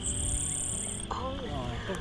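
A rose-breasted grosbeak sings a short, sweet warbling phrase outdoors, starting partway through over a steady high insect drone and low background rumble.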